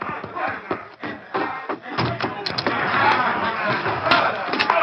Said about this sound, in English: As they drew closer, they realized the noise was coming from the cafe. There's a rumpus in the cafe.